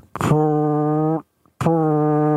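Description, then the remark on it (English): A voice imitates a ship's horn with two long, steady, low honks, each starting with a breathy burst, the first lasting about a second, then a brief pause before the second. The imitated horn is that of a ship heading toward a dock. “There's a ship coming straight at us. Right? And I'm like, huh? And he honks again.”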